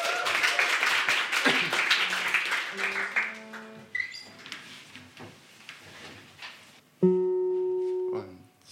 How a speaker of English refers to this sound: And I'm helped here by Jessica on the viola. Can we have a little round of applause for Jessica?